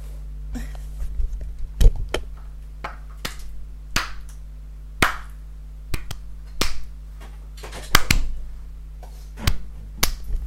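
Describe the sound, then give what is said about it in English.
A dozen or so sharp hand claps, fairly loud, spaced irregularly about a second apart over a low steady hum, with no talking in between, made to mark a section of a recording to cut out in editing. “Clapping so that cut I all can of cut that out.”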